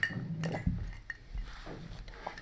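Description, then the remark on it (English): Ice cubes clink against the inside of a water pitcher in a few light, bright taps, with a dull low thud partway through as the pitcher moves; no one speaks. “They're hearing just ice.”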